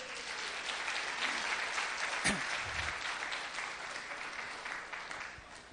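A crowd claps steadily for several seconds, a dense, even wash of many hands applauding with no pauses, holding at a fairly strong level before easing slightly at the end.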